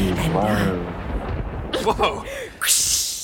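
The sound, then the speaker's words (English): A low thunder rumble rolls in behind a brief voice, with a crackling burst midway and a loud, hissing crash near the end as the storm noise swells. “It wasn't supposed to thunderstorm.”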